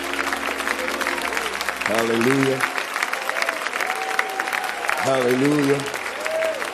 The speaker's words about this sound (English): Would you clap your hands and thank the Lord for forgiving you of your sins?